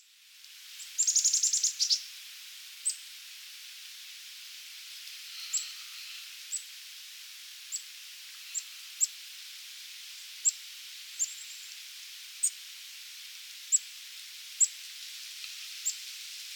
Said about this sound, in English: The chickadees, at least, I am able to record. I capture their sip calls and watch as they begin to forage again, cautiously.